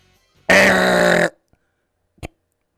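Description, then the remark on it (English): A quiz show buzzer gives one harsh, raspy blast lasting under a second, low and grunt-like rather than crisp. After a short silence comes a single faint click. No one speaks. “That was a really pitiful buzzer, by the way.”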